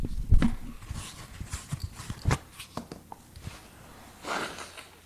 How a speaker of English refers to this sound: Well, that's pleasant. What's that? Blowing my nose? I'm sorry.